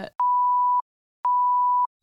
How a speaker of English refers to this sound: So you think I'm going to beep it out?